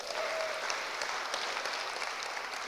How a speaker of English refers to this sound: You have a kicking worship band. They are awesome. Can we give them a round of applause for being awesome?